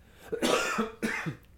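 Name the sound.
coughing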